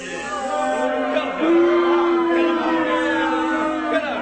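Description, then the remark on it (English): A crowd boos in a loud, sustained wave of low, drawn-out jeers that swells and holds for several seconds, a displeased reaction without clear words. “Crowd was not pleased with you guys.”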